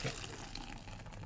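A short, steady pour of liquid from a can into a cup, a bright splashing trickle with a fizzy hiss, filling continuously for about a second.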